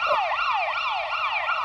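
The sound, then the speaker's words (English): An ambulance siren wails in a fast, repeating rising-and-falling sweep, loud, with no talking, like an inserted sound effect. “Yeah, I think he threw an ambulance at it.”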